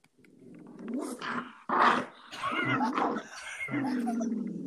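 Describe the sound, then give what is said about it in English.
A dog growls in a long, rumbling run that swells and dips, with a sharper, louder snarl partway through before settling back into a steady growl. “Is your dog? Is your dog?”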